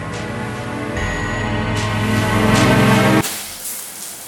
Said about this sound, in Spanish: Trato de concentrarme en el sonido del agua cayendo. Estoy en el cubículo más alejado de la puerta principal.